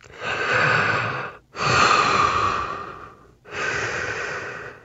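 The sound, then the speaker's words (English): Heavy breathing of an astronaut inside a spacesuit helmet on the moon, in three long breaths, each a broad airy rush with brief gaps between. No talking. “But otherwise, they would hear breathing.”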